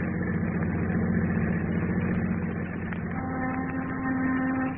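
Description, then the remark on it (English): A car engine idles in fog in a steady, continuous low rumble with a faint mechanical whine, its pitch shifting slightly partway through. No one speaks. “I'm going to stop here. Now, you stay in the car.”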